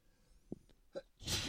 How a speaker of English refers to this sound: I'm putting a sneeze. Hold on.